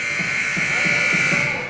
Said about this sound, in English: You hear the buzzer in the background. It's just about go time.